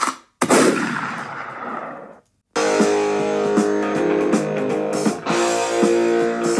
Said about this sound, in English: I need more noise on my gunshot.